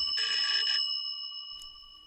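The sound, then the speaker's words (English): An electric bell, rung without any physical linkage, rings in a rapid metallic burst for about half a second, then its bright, high tones hang on and slowly fade, with a faint tap near the end. “That a bell could ring without any physical linkage, and of course it got tremendous coverage in the newspapers the following day.”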